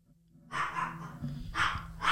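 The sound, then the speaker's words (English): A dog named Nero barks loudly at an airplane in a few harsh bursts, a long one followed by two shorter ones, over a low steady hum. “He just hears the airplane.”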